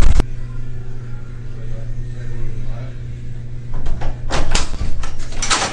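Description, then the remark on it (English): A door opens against a steady low hum, with a sharp clack near the start and a burst of rattling, clattering handling toward the end. “Door's open.”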